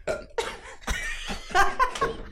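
A woman belches in a quick series of about five or six loud, rough, gurgling bursts over a couple of seconds, each one abrupt and throaty, with no talking.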